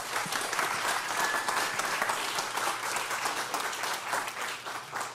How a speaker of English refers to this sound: So give a big round of applause for Tim.